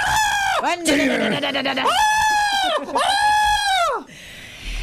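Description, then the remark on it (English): A voice mimics a woman screaming while being chased by a chainsaw: loud, arching shrieks that rise and fall three times, with a rough buzzing rasp between the first two. “Now, if anyone's ever seen it, the last 35 minutes of that film, it's a great film, the last 35 minutes of that film is a woman screaming as she's being chased by a chainsaw.”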